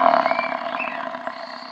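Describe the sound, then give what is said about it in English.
A single long, low bellow from a water buffalo named Hendrik in South Africa, a rough, droning call that carries steadily for nearly two seconds before easing off slightly, with no talking over it. “A water buffalo? Oh boy, I love water buffaloes.”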